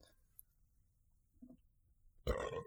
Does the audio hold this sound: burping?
yes